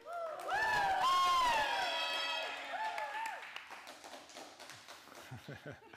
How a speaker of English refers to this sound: But I need to get a level. So I need you all to cheer on the count of three so I can just kind of get a level. All right, ready? One, two, three.